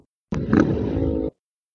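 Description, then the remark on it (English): A motorcycle engine at higher revs, with a redline of 10,000, revs in one loud, throaty burst of about a second, holding a steady low rumbling pitch before cutting off abruptly, with no voices over it. “Sounds like it's at higher revs.”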